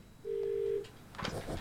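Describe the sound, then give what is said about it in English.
A single steady electronic telephone tone of an incoming call sounds for about half a second, clear and fairly loud, followed by a burst of muffled, rustling noise. “Oh, she's ringing on in.”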